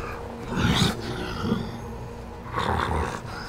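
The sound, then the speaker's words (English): A person growls and snarls like a large, dark gray and black wolf backing up, two rough, throaty bursts separated by a brief quieter pause. “Backing up a little bit, snarling.”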